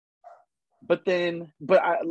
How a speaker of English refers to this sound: Sorry, the dog's barking.